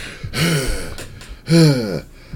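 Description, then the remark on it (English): Two heavy, raspy, loud breaths in the background, each a drawn-out gasping inhale or exhale with a throaty, voiced edge, separated by a brief pause. No talking. “On the article front of the heavy breathing in the background, sounds like somebody's on the fucking iron lung in the other room.”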